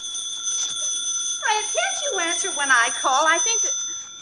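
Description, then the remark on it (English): A telephone rings with a steady, high, continuous tone throughout, and partway through a voice starts speaking over the ringing. “Telephone's ringing!”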